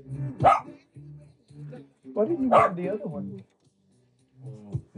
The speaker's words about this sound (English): Please stop assaulting me. Stop assaulting me. Assaulted by a 3-pound chihuahua here.